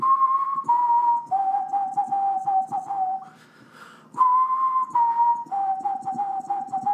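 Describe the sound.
Someone whistles an imitation of sparrow birdsong: steady, clear notes stepping downward in pitch, played as a phrase, then repeated after a brief pause, over a soft low background murmur.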